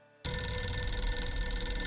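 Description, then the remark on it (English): After a moment of silence, a telephone on a bank manager's desk in a Chase bank bursts into a loud, continuous ring, its bright bell sound sustained, with no one speaking. “the phone sitting on Barrett's desk started ringing”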